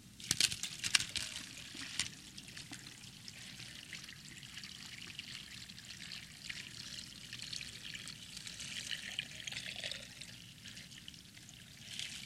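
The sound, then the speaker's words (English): Water pours steadily into a jar filled with little rocks for several seconds, a continuous splashing trickle with a bright hiss, moderately loud, with no talking. “He goes, no, actually it's not. And he took some water.”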